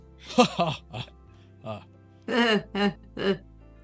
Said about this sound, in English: He coughs, waiting for someone to offer to take his jacket.